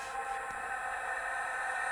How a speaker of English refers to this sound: A lot of reverse echo there.